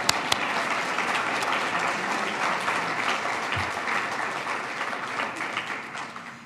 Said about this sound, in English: So let's give Andy another round of applause.